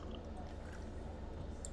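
A soft, steady trickle of Eagle Rare 10-year Kentucky Straight Bourbon Whiskey, 90 proof, being poured into a glass, quiet, running continuously for a couple of seconds with a faint clink near the end.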